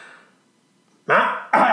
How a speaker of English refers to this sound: I had to clear my throat there.